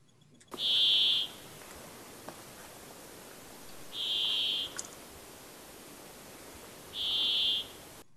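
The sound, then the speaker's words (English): Three drawn-out, buzzy wheezing notes of a brambling, a finch, each under a second long, repeated about every three seconds, clear over a faint steady hiss, with no talking. “The Brambling is another passerine bird. This time, it's in the finch family, which is a group of small birds that have stout, almost cone-like bills that are adapted for eating seeds and nuts.”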